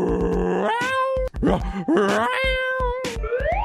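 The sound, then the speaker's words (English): A voice imitates a cat, drawing out several whiny, sliding meows one after another, loud, over a steady low thumping beat. “Get yourself a cog. Meow.”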